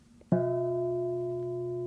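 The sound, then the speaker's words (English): A single bell struck once, its clear tone ringing out with steady, layered overtones that hum on and fade only slightly. No voices are heard. “And then the bell rings.”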